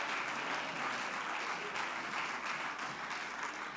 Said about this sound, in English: And the reason why some of these folks are standing clapping is because they've been through that.